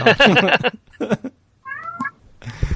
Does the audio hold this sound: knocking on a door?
no